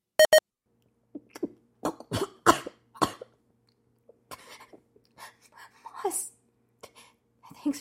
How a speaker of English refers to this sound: Just go from the coughing. Coughing blood.